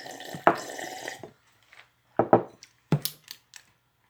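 pouring or drinking water

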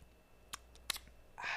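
sipping a drink

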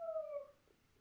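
dog howling

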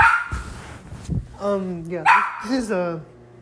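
dog barking

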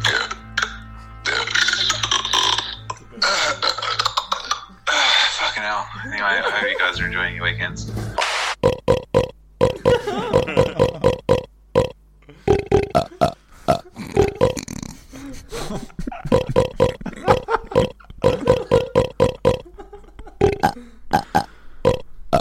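repeated burping

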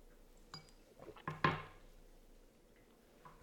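shot glasses clinking

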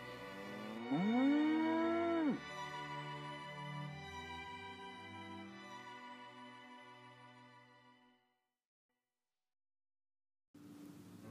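cattle mooing

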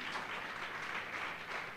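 audience clapping hands

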